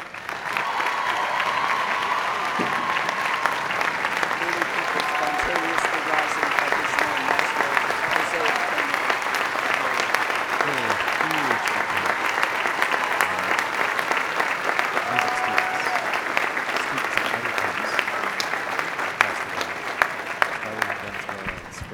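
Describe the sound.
Sustained, steady applause from a large audience honoring Maestro José Antonio Abreu, dense clapping holding an even loudness for over twenty seconds, with faint murmuring voices blended in.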